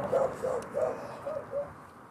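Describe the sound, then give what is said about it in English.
A dog barks five times in a steady, evenly spaced series, moderately quiet against a faint outdoor background with no talking, in a scene with cars passing and a bus stop. “Bird flying off there, a dog barking.”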